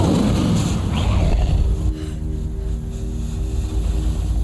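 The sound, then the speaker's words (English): Arthur Weasley's enchanted car, turned wild, moves through forest undergrowth: its engine drones low and steady while rough, rustling crackles of brush being pushed through fill the first seconds, then the motor hum carries on alone. “Harry! Harry, it's our car!”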